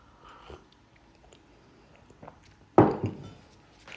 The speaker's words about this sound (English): Hang on, let me take a sip.